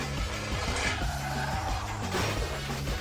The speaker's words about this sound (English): In local news, a spectacular car crash. Car, house, car.